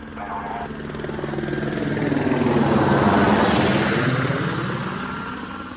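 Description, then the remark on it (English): The Kern County Sheriff's helicopter, Air One, passes overhead during a search, its rotor thumping in a steady rapid beat that swells louder toward the middle and then slowly fades, with a broad engine whine layered over the chop. “Air One, the Kern County Sheriff's helicopter, was requested to assist with the search.”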